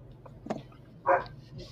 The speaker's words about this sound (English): Sounds like a different dog.